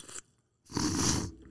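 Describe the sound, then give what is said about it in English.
A drinking glass clatters against a hard surface: a short scrape, a brief pause, then a longer, louder gritty rattle lasting about half a second. No one speaks. “Just your glass clanging and then, like, you putting it, it's, like, separate, like.”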